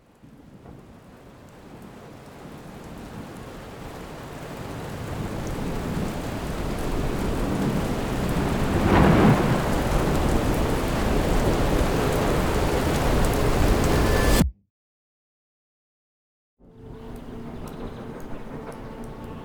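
Heavy rain roars in a dense, steady wash with a rumble of thunder swelling through the middle, then cuts to silence before a quieter stretch of rainfall resumes.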